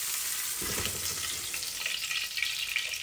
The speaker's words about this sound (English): this point you might want to turn it down a little bit, because I had it on pretty high heat to fry the chorizo.